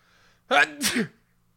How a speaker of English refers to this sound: I'm going to sneeze into the mic in a second here.